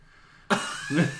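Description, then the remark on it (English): A person imitates a cough of smoke with their voice, one loud burst that breaks into a second rough push of breath, standing alone with no talking around it. “No, it's just a cough of smoke.”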